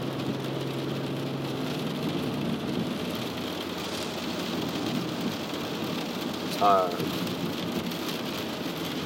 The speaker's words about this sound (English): Well, alright, so let me think of a way to close this, because it's raining, and I know you guys can probably barely hear me.